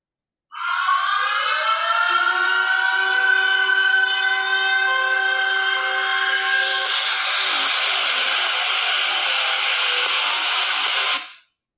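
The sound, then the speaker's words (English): A loud, sustained siren wail with layered, slowly rising tones blares for about eleven seconds, growing harsher and noisier partway through before cutting off, at the start of wrestler Bron Breakker's NXT entrance theme. No voices are heard. “Good, because the sirens at the beginning give it away because it's similar to his dad.”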